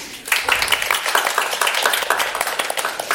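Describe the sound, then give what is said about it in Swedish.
A live audience at Forum för levande historia in Stockholm applauds steadily for itself at a recording, many hands clapping in a dense, continuous patter that starts abruptly and holds at a fairly loud, even level throughout. “Välkommen, en applåd för publiken!”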